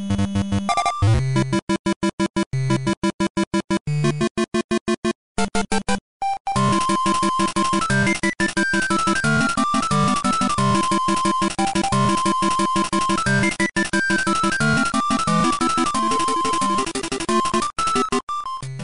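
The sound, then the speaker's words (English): Bright, bouncy chiptune music from the video game Kirby's Dream Land: a choppy, stop-start opening gives way to a steady, upbeat melody over a bass line. It plays loud, with no voices. “It's a Kirby game. It's Kirby's Dream Land.”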